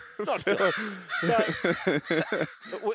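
A rapid series of harsh, raspy crow caws, about ten short calls in quick succession, fairly loud, with the rhythm stuttering slightly toward the end.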